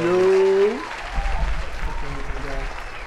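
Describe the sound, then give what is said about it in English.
Applause and cheering from a small group welcoming a special guest, opening with a sustained whooping voice before settling into steady clapping, with some voices mixed in toward the end. “Keep the applause down.”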